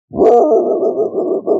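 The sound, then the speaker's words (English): A person imitates a dog barking far away: one drawn-out, muffled, woofing sound lasting about a second and a half, with a short breathy onset and a slight dip before the end. “Have I done my barking in the distance impression for you?”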